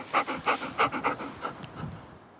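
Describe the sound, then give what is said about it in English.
A female dog named Rain pants in quick, regular breaths, about eight rapid huffs that taper off into softer, fainter breathing by the end. No one speaks. “Well, it's Rain come to join me. Good girl, are you back?”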